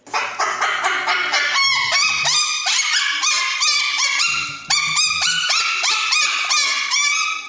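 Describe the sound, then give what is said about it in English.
A cockatoo shrieks over and over in loud, harsh, raspy screeches, one after another for several seconds with only a brief break partway through, and no talking. “Go Google a cockatoo sound.”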